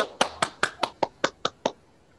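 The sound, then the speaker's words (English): Clapping in welcome from an audience of about 1,000 people greeting a guest actress: eight crisp, evenly spaced hand claps in a steady rhythm, each a sharp bright smack, with no voices and a brief quiet tail after the last clap. “1,000 people clapping for you.”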